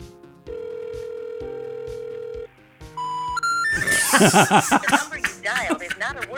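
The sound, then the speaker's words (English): A phone line gives one steady, two-second ringback tone on an outgoing call. Three quick rising beeps follow, then a recorded-sounding voice speaks over the line. “Oh, it's ringing.”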